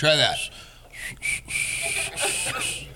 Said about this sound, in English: It just sounds like you're lightly blowing on something.